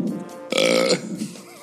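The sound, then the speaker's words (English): A single loud, drawn-out burp with a croaky, resonant tone, followed by softer trailing sounds. “I could literally smell that burp listening to it.”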